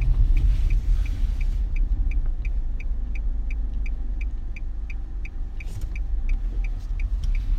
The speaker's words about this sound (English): Hear my clicking? Click, click, click, click. All right. Yeah, I'm making a left turn.